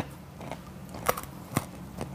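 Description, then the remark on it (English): Crunchy chewing of dry cat food during a cat food taste test, with about four sharp, irregular bites cracking through a low steady hum over two seconds. The crunches are moderately loud, and no one speaks. “Cat Food Taste Test”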